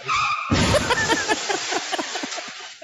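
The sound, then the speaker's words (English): A car's tires screech briefly, then a loud crash erupts, followed by a scatter of clattering debris settling over the next couple of seconds. “I hope you crash that fucking car.”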